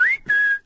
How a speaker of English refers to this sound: I'm whistling now.